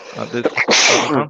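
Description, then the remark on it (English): A single loud sneeze: a short voiced intake building into a sharp, breathy burst that trails off quickly. “Bless you.”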